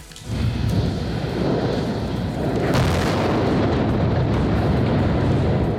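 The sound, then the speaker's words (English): A loud, sustained roar of a SpaceX Starship booster rocket bursting into flames during testing: deep rumbling and crackling that starts abruptly and keeps thundering steadily without letting up, with no voices present. “Yeah, that explosion engulfed the base of the rocket in a ball of flames and heavy smoke.”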